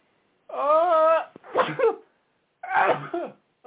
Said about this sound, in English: I'm going to sneeze. Hold on.